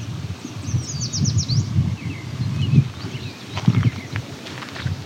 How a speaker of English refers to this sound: The yellow warbler isn't being quiet, though. There's an American robin in the distance, singing.